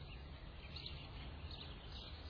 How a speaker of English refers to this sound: They're showing a house with birds tweeting in an upscale neighborhood.